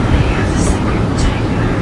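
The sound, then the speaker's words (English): A loud air conditioner roars steadily with a dense, unbroken whoosh, like an airplane cabin, and a couple of brief airy hisses rise over it. “Sexy how it sounds like we're on a plane getting ready to skydive with that fucking air conditioner.”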